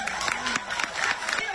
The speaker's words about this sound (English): Who the fuck claps to that?